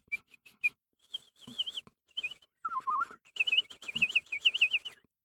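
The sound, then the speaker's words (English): A bird trapped and tangled in the thorns of a hedge in the countryside tweets close by in a lively series of chirps and warbling, whistled trills, several quick bursts with short pauses between them, fairly loud and with no talking. “It was the sound of a bird tweeting, but it was very close by.”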